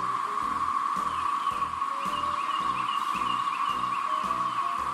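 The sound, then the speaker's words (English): A loud, steady chorus of cicadas in Union County, Georgia drones without pause, a shrill, alarm-like buzz with faint pulsing ripples running through it, filling the whole clip with no voices. “Apparently, the people in Union County, Georgia are now begging, the authorities actually, are begging residents to stop calling 911 about cicadas.”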